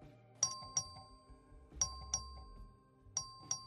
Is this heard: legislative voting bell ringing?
yes